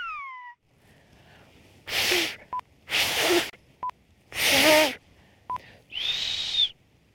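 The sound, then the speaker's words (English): Someone tries to whistle the Canary Islands whistled language in short bursts: a clear gliding whistle, then several breathy, airy blows with faint tones, separated by brief pips, ending in a steadier high whistle. Fairly loud. “The Canary Islands have a song of their own, in a whistle carried on the wind.”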